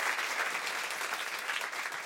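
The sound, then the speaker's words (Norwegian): A steady wash of audience applause welcoming the evening's guest, a zoologist and spider expert, on the show Rekommandert, many hands clapping densely and evenly at a fairly loud level throughout, with no voices standing out above it. “Gi en stor applaus til kveldens gjest, zoolog og edderkoppekspert”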